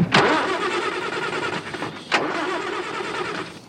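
A car engine, started at a mechanic's, turns over and catches, settling into a loud, steady rumbling roar, with two sharp bursts punctuating the noise early and midway. No one speaks.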